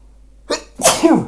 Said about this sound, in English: Oh, I got the sneezes big time.